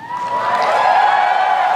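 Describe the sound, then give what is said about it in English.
A large crowd reacts with a sustained, collective groan-like murmur of many voices, loud and steady for under two seconds, with no single speaker standing out. “I like how the crowd was like, "What? Why'd you do that? It's kind of mean."”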